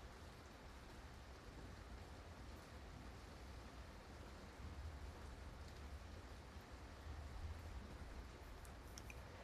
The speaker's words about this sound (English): It's raining pretty hard where I am right now.